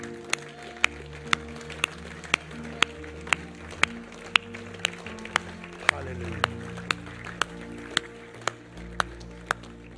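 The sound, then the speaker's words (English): A standing audience claps in steady unison as a clap offering to the King of Kings, about two sharp claps per second, over sustained music and a murmur of voices. “Can we stand and give the King of Kings a clap offering?”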